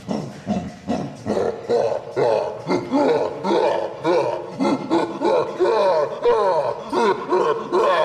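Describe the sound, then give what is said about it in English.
A loud, continuous stretch of gorilla-like roaring and grunting, seemingly a human voice imitating the animal, with rough, wavering pitch sweeps and short pauses over about eight seconds. “He's a gorilla.”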